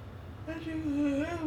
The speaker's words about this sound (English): Sorry, I was yawning.